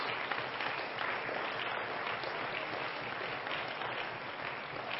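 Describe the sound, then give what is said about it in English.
A church audience claps their hands unto the Lord during a morning service in a dense, steady wash of applause that holds at an even loudness for several seconds, with no voices standing out. “Let's clap our hands unto the Lord, everybody.”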